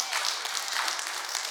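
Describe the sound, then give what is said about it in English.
A crowd filling church pews claps together in a dense, steady patter of many overlapping hand claps, sustained and fairly loud throughout with no voices standing out. “Go on and give yourself a round of applause or something, huh?”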